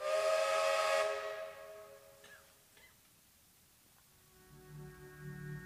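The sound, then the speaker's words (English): A loud, long freight train whistle blast with a chord of steady tones fades away after about a second, leaving a faint hum and rumble of rail noise. “The sound of freight trains begins to sound suspiciously like broadcasts on the pirate station.”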